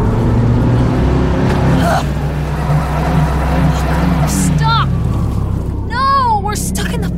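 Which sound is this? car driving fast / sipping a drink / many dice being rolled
car driving fast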